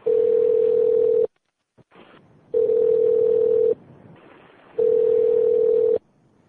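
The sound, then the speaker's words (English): A telephone line tone sounds in three long, steady, mid-pitched beeps, each over a second long, separated by pauses filled with faint line noise while the call is being transferred to the front desk. No one speaks. “Okay, what you're going to do, I'm going to patch the front desk through”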